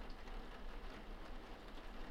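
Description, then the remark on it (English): Steady, soft rain falls continuously on a rainy day, a dense even patter with no breaks, fairly quiet and diffuse, with no voices present. “This feels like a wonderful activity for this rainy day.”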